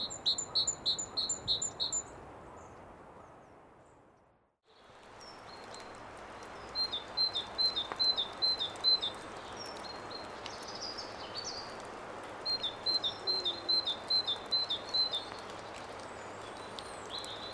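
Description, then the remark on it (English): A great tit sings its two-tone teacher call, bright strident repeated phrases in bursts, over a steady rustling background with a brief quiet gap. “This is the great tip, doing the classic teacher sound, where it's got two tones, both quite strident and forceful.”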